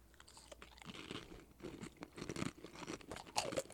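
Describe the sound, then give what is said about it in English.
A crisp black fortune cookie snaps open and is chewed, a steady run of dry, crackly crunches over a few seconds with no one speaking. “They have a really good crunch, and they're just subtly sweet.”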